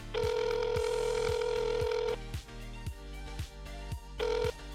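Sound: telephone call ringing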